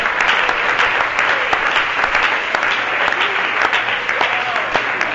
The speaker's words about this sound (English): Keep clapping. Keep clapping. Just keep clapping your hands. Praise God. Now clap them to my beat, would you?